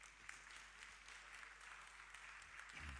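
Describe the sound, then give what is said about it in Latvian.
Steady applause from an audience fills the whole stretch, a dense, continuous patter of many hands clapping at moderate volume, with no voices standing out. “Un vēlreiz liela aplausa.”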